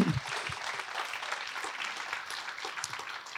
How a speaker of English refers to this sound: Why don't we just give Rachel and Stephen a round of applause? Could we do that? Just welcome them here.